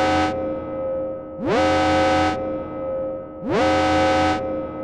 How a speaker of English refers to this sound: Okay, so this is spoiler. Let's just make sure we get that out there. This is a full, not like a full review. Hit the alarm.